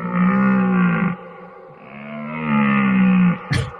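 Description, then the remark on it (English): A deer buck calling from far off in a canyon: two long, drawn-out, moaning bellows, each sustained for over a second, the second ending in a brief sharp burst. “It's a deer in a distant canyon.”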